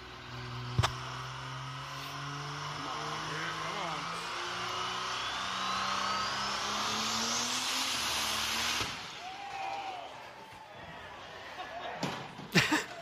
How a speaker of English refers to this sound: I love how quickly he got out of the car. That's a piston right there, literally, right? Like the engine, I mean, boom.